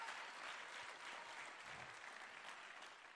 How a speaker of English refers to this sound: Is there anybody this morning that will just clap their hands and bless the Lord this morning?